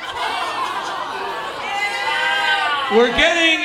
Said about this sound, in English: I'm booing this guy because we're getting into too straight to fuck territory.